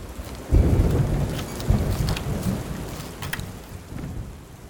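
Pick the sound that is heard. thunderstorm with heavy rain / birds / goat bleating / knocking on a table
thunderstorm with heavy rain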